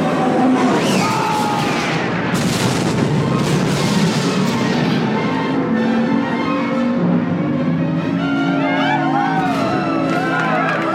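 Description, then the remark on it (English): The Executor, Darth Vader's huge capital ship in Return of the Jedi, falling and crashing into the Death Star and exploding in a ball of fire: a dense, roaring wall of booms, crackling and whooshing tones that stays loud and chaotic throughout, with a sharp surge a couple of seconds in and no talking. “It falls and crashes into the Death Star in a wonderful ball of exploding fire.”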